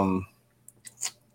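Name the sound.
computer mouse clicking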